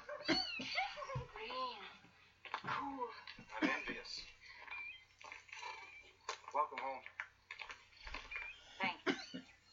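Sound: kittens meowing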